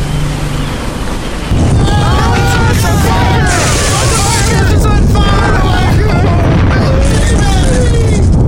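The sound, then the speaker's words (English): A Captain Morgan-sponsored speedboat races in fast and crashes without slowing: after a quieter opening, a loud, sustained roar of engine and churning water bursts in, with wavering, yell-like tones riding over the din. “Wow, that speedboat is coming in really fast.”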